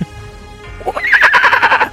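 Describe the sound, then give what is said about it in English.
A person's voice imitates the shrill scream of a charging horse, a rising, wavering whinny that starts after a brief pause and holds for about a second, loud. “and so it charges past the rocks, and you hear just a horse's scream as it kind of charges.”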